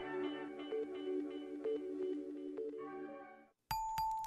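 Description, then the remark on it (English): A doorbell located behind the desk of a peer support service rings with a ding-dong chime, its bright tones repeating and ringing out with reverb for several seconds, then cutting off abruptly before a short burst of another tonal sound. “If you would like to speak to someone, come to the desk and tell a volunteer, or ring the doorbell located behind the desk.”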